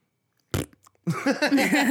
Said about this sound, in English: That little fart noise? Yeah, that little fart. That's nice. Oh, boy, that's the episode-ending fart noise. Did you hear that? We're being farted out of the room.